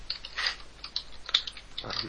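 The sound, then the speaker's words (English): Quick, irregular clicking of keys on a computer keyboard, fairly quiet, with a few sharper taps standing out from the steady patter and no voices. “Just typing it in there.”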